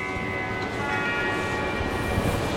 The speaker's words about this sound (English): Skate in Union Square, says the Powell and Mason cable car turning in front of us right now, the 23 of the San Francisco Municipal Railway.